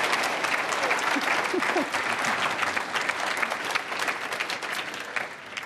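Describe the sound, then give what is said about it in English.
A sustained burst of audience applause for Yvon Chouinard at the end of a lightning round fills the whole stretch, dense, steady clapping from many hands at an even level, with faint crowd murmur underneath. “Let's give a round of applause to Yvon Chouinard for getting through that.”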